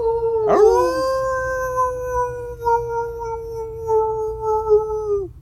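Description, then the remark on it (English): A man imitates a wolf, giving one long, loud howl that swoops upward at the start, then holds a steady, wavering pitch for about five seconds before trailing off. “And that gentleman you heard first howling at the moon, of course, is my hairy, scary co-host, looking more like a werewolf every day in quarantine”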